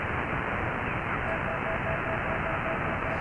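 Steady radio static hisses throughout on an amateur radio receiver tuned to the 20-meter band at almost 8 o'clock at night, with faint, broken whine-like tones from computer interference pulsing intermittently underneath. No one speaks.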